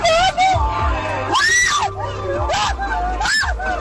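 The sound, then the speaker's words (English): A passenger screams repeatedly in high, rising and falling shrieks, loud, over a steady low engine rumble inside a moving car as the dozing driver drifts off the road into a cornfield. “What are you still screaming for?”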